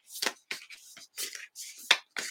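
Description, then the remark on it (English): A deck of oracle cards being shuffled during a card reading: a quick series of about eight soft, crisp, papery bursts, each a brief rustling slap with short pauses between, fairly quiet and with no talking. “Okay, one more shuffle, because they actually told me to pick the fairies, and I don't want to read all that again.”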